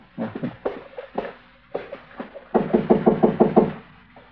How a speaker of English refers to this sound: All right, go ahead and knock. Let's get clear before the door opens up.